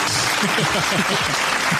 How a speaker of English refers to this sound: I'll give you claps. You need to give him an applause.